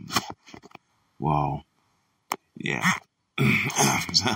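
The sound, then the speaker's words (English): Early in the morning, after taking a cough drop, someone clears their throat several times in short, rough, voiced bursts separated by brief pauses, with a small click midway and a longer, gravelly rasp at the end. “I'm trying to just clear my throat here.”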